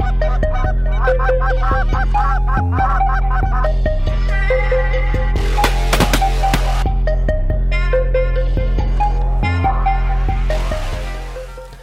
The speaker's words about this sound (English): What kind of goose call should I buy?